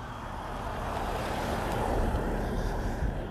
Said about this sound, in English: That car keeps driving by.